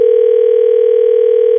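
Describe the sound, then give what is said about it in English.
A steady, unbroken telephone dial tone hums loudly and evenly for the whole moment, heard on its own as a call is about to be placed, with no voices. “Okay, let's call her up here and get her on the phone.”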